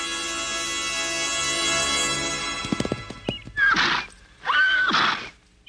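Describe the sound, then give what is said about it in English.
A saddled horse gives a long, loud whinny and shies a bit, followed by a few sharp hoof clops and two heavy, breathy snorts. No one speaks. “Bowdrie walked over to the horse.”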